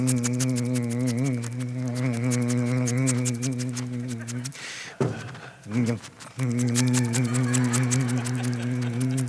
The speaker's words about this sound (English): one of those iRobots. You seen the iRobots? You know, the little guys that vacuum